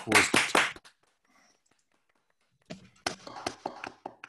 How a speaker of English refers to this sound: Let's have a little round of applause first.